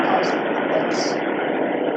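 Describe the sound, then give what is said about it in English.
Steady, unbroken car noise fills the whole two seconds: a dense, hissing rumble like passing traffic or an idling engine, loud and even, with a few faint higher whooshes on top. “I think it's just car noises.”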